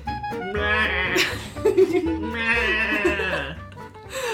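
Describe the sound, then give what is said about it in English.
A person imitates a llama with two drawn-out, wavering nasal cries, fairly loud, separated by a short breathy, laugh-like burst. “Oh, wait, are you doing a llama? This is a llama.”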